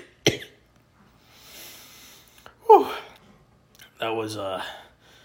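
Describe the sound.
A loud coughing fit: two sharp, harsh coughs a couple of seconds apart, with raspy breathing between, then a strained, voiced gasping wheeze at the end.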